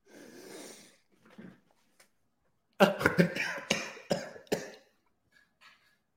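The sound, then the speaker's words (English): A few soft gulps and swallowing noises as someone downs a whole hot, salty drink in one go, then a loud burst of several rapid, harsh coughs and sputters, tapering off into quiet breathing. “I'm going to go down the hatch, right?”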